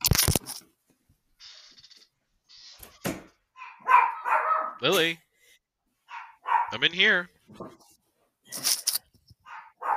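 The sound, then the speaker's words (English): A dog, Lily, barks several times in short, sharp bursts, with a brief higher yip, while a person speaks between the barks. “She's barking at nothing.”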